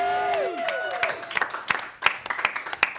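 An audience breaks into applause for a guest, a patter of sharp, irregular claps building in density over a few seconds, with a brief falling tonal sound fading out at the very start.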